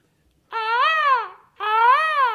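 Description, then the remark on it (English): A voice imitates the call of the yellow bird from Angry Birds with two loud, drawn-out squawks, each rising then sliding down in pitch, separated by a brief pause, with no other talking. “That's my impression of, like, the yellow bird from Angry Birds.”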